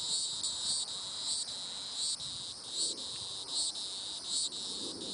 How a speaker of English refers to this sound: we also have our annual cicadas that also are calling. And this isn't the exact species from our area, but I will just play a little bit of this one. This is an annual cicada.